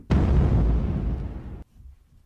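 Cannon fire from attacking neighbor ships: a loud, sudden boom that swells into a deep, rumbling roar for about a second and a half, then cuts off abruptly, leaving a faint low rumble.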